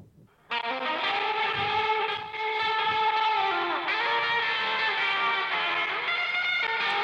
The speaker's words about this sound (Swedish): Här har vi faktiskt lite roliga grejer. Roland Eko på.